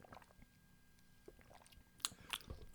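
Quiet mouth sounds of someone sipping a strawberry milk drink through a straw, with two short, sharper slurping bursts near the end. No one speaks.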